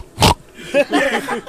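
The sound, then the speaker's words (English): Someone mimics snorting a line of cocaine: one sharp, loud, breathy nasal snort, followed by a second of voiced, piggish snuffling grunts. “That's you doing lines of blow?”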